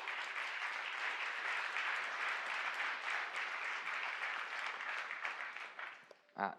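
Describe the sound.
Steady, sustained audience applause welcoming a man invited up, a dense wash of many hands clapping at an even loudness for about six seconds before tapering off, followed by a brief burst of a voice.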